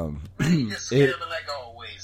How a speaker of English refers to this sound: Can you clear your throat? All right, thank you.